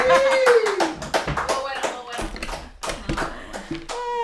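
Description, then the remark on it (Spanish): A burst of hand clapping from a small group at the end of a party game, quick and uneven, with excited voices whooping and talking over the applause throughout. “¡Aplauso!”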